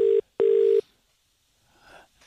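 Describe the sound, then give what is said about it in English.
Two loud, steady telephone tones sound in quick succession as a call is placed to a contest winner, a short beep then a longer one, followed by a brief faint rustle on the line. “And we're going to give the winner a call now.”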